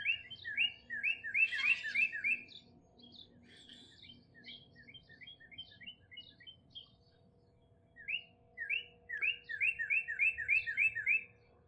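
Small birds chirp in quick, dry trilled bursts, a house finch and a chipping sparrow calling back and forth in repeated runs over a faint low hum, with no voices, as the house finch chases the chipping sparrow away.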